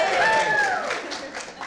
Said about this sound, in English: Oh, and people are getting applause. Hey, it's a matter of applause. Got applause.